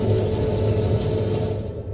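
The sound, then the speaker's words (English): Raw, unfiltered underwater recording of boat noise: a steady, loud low-pitched engine drone with humming tones that holds for the full two seconds, no voices, with whales communicating within the noise, their calls buried and hard to pick out. “You'll hear some boat noise, and within that, there's actually whales communicating.”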